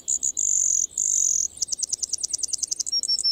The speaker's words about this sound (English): Yet even among this accomplished company, the Brewer's song stands apart. While most birds offer a melody, the Brewer Sparrow seems to perform an entire aria.